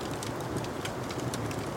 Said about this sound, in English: You feel a fire at your back and hear rain outside.